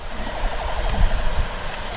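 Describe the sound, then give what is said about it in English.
A distant ambulance siren wails faintly as it comes to a stadium for an injured player, its warbling tone rising and falling over a low, steady background rumble, with no one speaking amid the silent stadium. “Other than the siren that we hear out in the distance, it is complete and total silence here in the stadium.”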